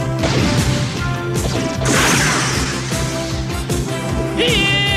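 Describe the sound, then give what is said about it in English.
A loud, dense stretch of explosion blasts erupting around Vampire, launched by Rhino from the command center tube: repeated crashing booms and whooshing bursts pile up over a sustained, tonal musical score, with no talking. “So anyway, so then we cut to blasts erupting around Vampire.”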